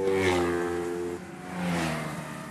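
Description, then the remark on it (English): Small go-kart engines rev loudly, whining up in pitch, easing off briefly, then surging again in a second buzzing burst. The karts are toy-sized racing cars about 6 feet long by 4.5 feet wide, going over 60 miles an hour, racing in the finals of the 2012 Irish Go-Karting Championship. “Go-karts. They're toy-sized racing cars, about 6 feet long by 4.5 feet wide,”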